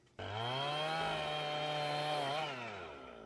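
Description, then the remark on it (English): A chainsaw roars up abruptly and runs at a steady, loud whine as it cuts wood into four slabs, its engine pitch dipping briefly under load near the end before easing off. “Boom, four of slabs that perfect? A chainsaw.”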